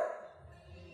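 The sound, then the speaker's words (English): A single short bark from a puppy right at the start, then fading into a low rumbling background with no further barks. “The dog seems pretty chill, dude.”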